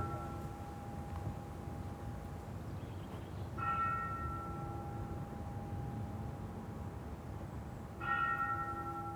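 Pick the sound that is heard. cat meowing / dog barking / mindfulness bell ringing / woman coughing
mindfulness bell ringing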